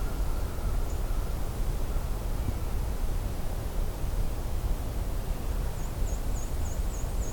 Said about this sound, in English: There's been a couple of times I've encountered this particular hermit thrush call and just didn't know what it was at the time.